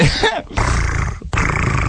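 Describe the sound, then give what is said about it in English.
A man makes rough, throaty growling noises in imitation of a crazy dog, delivered in two loud bursts with a brief pause between them. “Is he clenching his teeth and doing it? Mm-hmm. He's like crazy. Like a crazy dog.”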